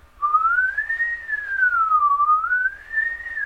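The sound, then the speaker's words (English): Duophonic overtone singing by a human voice, two notes at once: a bright, whistle-like tone glides slowly up and down over a low, steady droning note, sustained for about three seconds, fairly loud, with no talking. “I'm still going, but the whistle's going.”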